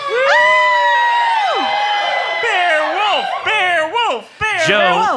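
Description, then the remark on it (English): A crowd cheers wildly, with high, sustained whoops and shrieks that rise and swoop in pitch, several voices overlapping loudly for a few seconds. “The crowd goes wild.”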